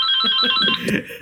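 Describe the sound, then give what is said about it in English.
A telephone rings with a loud, steady electronic warble, heard alone, with a brief rattling burst near the end of the short ring. “This is Brewdog for the ringing phone.”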